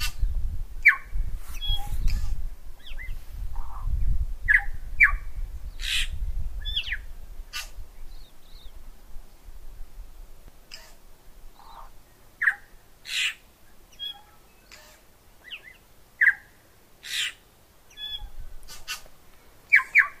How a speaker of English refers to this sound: Amazing, isn't it? One of the birds you heard on there was the tui.